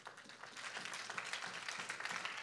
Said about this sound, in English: And if you love the Lord, won't you clap your hands?